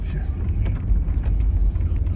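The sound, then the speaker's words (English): A heavy truck engine, fired up after the oil is checked, runs steadily, a deep continuous rumble with a rough, throbbing texture that stays at an even, fairly loud level throughout. “We'll check the oil and put your ass up in there. Fire the old sewing machine up.”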